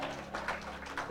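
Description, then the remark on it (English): An audience breaks into applause for the Lord Jesus, with dense, overlapping clapping that holds at a steady, moderate level for about a second, with a few sharper bursts. “Clap for the Lord Jesus.”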